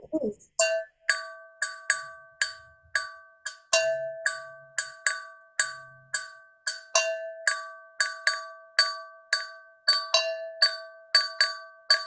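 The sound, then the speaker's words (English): A small handheld bell called an Agakakui is struck over and over in a steady, syncopated pattern, a rhythm related to speech that means 'come out and see what's happening', each bright metallic strike ringing briefly with clear overtones before the next. Fairly loud, with no talking. “I've got this little baby bell here. This is called Agakakui, and the rhythm that you'll learn if you ever come to a workshop.”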